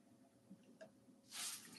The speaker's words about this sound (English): If you hear a silence, let me breathe and take a sip of my water.